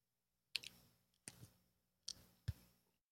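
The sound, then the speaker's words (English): The hinge of a Z Fold 4 foldable phone, in use for a year, crackles as it is opened and closed, giving four short, sharp clicks with brief crunchy tails, spaced unevenly over a few seconds with no talking. “The crackling that you heard, so this is the Z Fold 4, which I've been using for the last year.”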